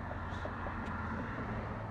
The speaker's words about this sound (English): And car's going fast.